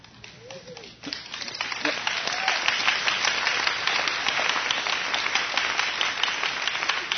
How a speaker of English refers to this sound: I guess I inspired you to encourage me. Maybe my love language is clapping or something.